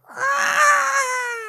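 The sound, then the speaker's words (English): A human voice imitates the mighty screech of an Eldritch Horror monster: one loud, sustained, shrill wail lasting over a second, its pitch sliding slightly downward, with no other sounds around it. “Okay, so the Eldritch Horror shrugs off the confusion ray and is back in business, and it is pissed, and it releases a mighty screech which sounds like...”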